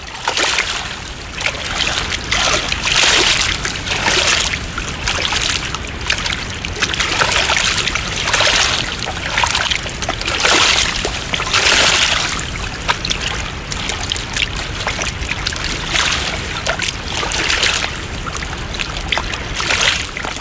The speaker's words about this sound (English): It's very brown, especially because when we're on the trail, we're not the closest to the river right when we start, but we do eventually jog up much closer to the river, and you definitely get some really lovely sound there again.